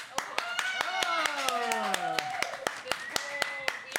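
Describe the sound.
Sharp, evenly spaced claps ring out steadily for several seconds while voices laugh over them, their pitch sliding downward midway before the clapping carries on alone.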